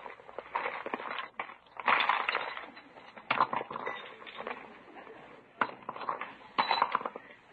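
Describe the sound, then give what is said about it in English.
Small objects such as lipstick, a compact, house keys, a pillbox, a fountain pen and a flashlight clatter and rustle as they are tipped out of a purse and shuffled about, with bursts of jingling, clinking and scraping in irregular clusters, fairly loud, with no one speaking. “I just have to take time to change my purse.”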